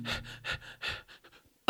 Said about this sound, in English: Wait, he's not dead yet. His chest is still moving, so he must still be breathing.